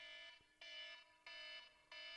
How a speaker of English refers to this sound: Okay, so that, my friends, is a 10-minute alarm telling me that I have 10 minutes until the show that I'm doing with a friend, it goes live.